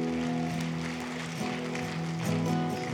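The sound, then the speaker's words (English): A church audience claps their hands for the Lord after a prayer, in a steady, dense wash of applause, layered over sustained musical chords that hold and shift throughout. “Can we just clap our hands for the Lord?”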